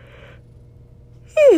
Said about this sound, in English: Sorry, I keep yawning. I'm exhausted.